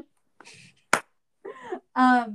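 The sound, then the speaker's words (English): A single sharp slap-like smack, made by a voice imitating the sound, set among a few short wordless vocal noises with brief pauses between them. “Before you have to hear the slap sounds anymore, we'll see you guys next week for another very fun episode of the Pop Podcast.”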